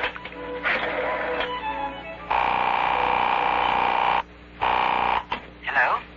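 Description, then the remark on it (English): A telephone being dialed, with clicking and buzzing at first, then a loud, steady electronic tone held for about two seconds, a shorter repeat, and a brief warbling tone at the end. “I'm dialing Marguerite, and you'll be able to hear for yourself.”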